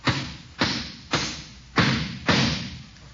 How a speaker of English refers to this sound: Why don't you hold it and let me hammer the nail? Because you're too little. You gotta know something to hammer.